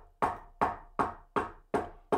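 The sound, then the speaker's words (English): Six firm knocks on a wooden door in a steady, even rhythm, each a sharp thud with a short decay, with no voices. “Everyone has to knock when they want to come in.”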